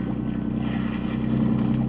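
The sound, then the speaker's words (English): A motorboat engine drones steadily as the boat is swung around, a low throbbing hum that swells slightly louder near the end, with no voices over it. “She might make it and hold on, but you take care of that. You swing the boat around.”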